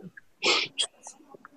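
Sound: sneeze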